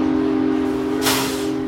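A steady, sustained train whistle blares loud, joined partway through by a rushing burst of steam hiss. No one speaks.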